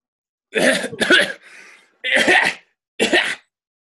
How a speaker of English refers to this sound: Achoo! Achoo! Achoo! Achoo! Hey! Achoo! There's dust in here. Achoo!